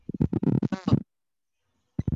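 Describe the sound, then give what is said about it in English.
A voice deliberately makes a second of choppy, garbled babble imitating scrambled, glitchy microphone static, with a warbling wobble near the end, then a pause before another short vocal burst. “Making it scramble now. I'm producing the static.”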